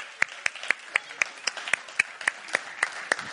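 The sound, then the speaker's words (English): Steady, rhythmic applause from an audience: about a dozen sharp, evenly spaced claps in a quick beat, moderately loud, with no talking over them. “Well, to give them a clap.”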